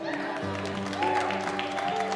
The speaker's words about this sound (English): Are you clapping for how my wife looks?